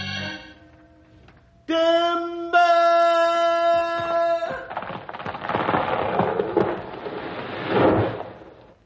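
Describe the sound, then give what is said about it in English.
A falling tree crashes to the ground with a loud, rumbling, splintering roar that lasts several seconds, hitting so hard it knocks out a big flame of fire, following sustained brassy musical tones, with no talking. “The tree hit the ground so hard it knocked a big flame of fire out of it.”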